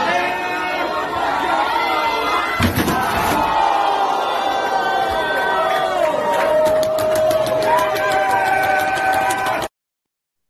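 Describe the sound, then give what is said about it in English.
A loud crowd roars throughout, broken by a sharp crashing impact of a wrestler being piledriven off a half wall through a table early on, then the cheering swells with rhythmic clapping before cutting off abruptly. “All hell pile driver off the little wall there, half wall through a table.”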